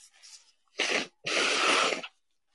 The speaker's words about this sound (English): Yeah, blowing my nose on a microphone. That's absolutely disgusting. Go, because I have a running nose. I can't help it. I can't help it if I have a runny nose.